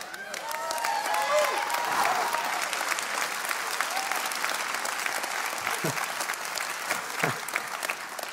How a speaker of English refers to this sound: Thank you. Don't normally get people clapping for my journal.